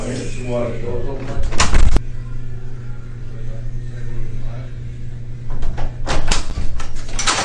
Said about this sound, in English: Doors open.